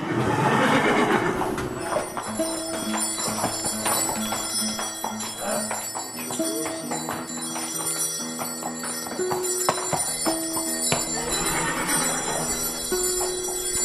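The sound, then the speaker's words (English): A team of draft horses being harnessed on a farm whinny loudly near the start and again toward the end, while bright jingling bells ring steadily throughout, with a few hoof clops in between. “So I watch my dad harness the team.”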